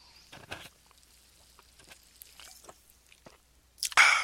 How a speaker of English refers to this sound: Sorry, I had to take a sip there. Quench my thirst.